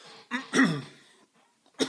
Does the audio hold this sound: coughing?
yes